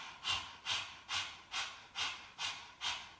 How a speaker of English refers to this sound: And then we're going to breathe through the mouth. You're really going to breathe like a dog breath, a panting dog breath. So it's like this.